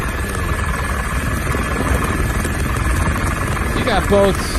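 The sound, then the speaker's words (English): A helicopter flying over the border river at La Joya, Texas, its steady, dense rotor and engine roar filling the whole stretch, loud, with a brief voice cutting in near the end. “It's a helicopter shot.”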